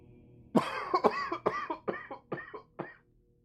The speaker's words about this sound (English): Ow. Cough and a headache is a bad combination, isn't it?